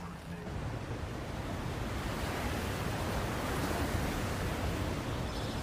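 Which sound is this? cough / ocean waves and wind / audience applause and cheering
ocean waves and wind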